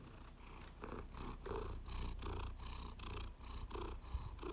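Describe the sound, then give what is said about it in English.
A cat purrs steadily, a low rumbling vibration with a regular in-and-out rhythm that continues throughout, with no talking over it. “My cat.”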